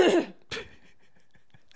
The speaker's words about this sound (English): Hang on, I gotta clear my throat.